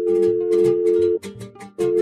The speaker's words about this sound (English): She'd waited all day to hear this sound, the dial tone connecting to home, and the voice on the other end saying, "Todo va a salir bien, mija. Everything will be okay."